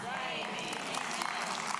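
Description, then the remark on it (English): An audience claps steadily for a couple of seconds, a dense, crackling wash of many hands at moderate volume, with a faint murmur of voices mixed in. “Oh, you'll clap for that.”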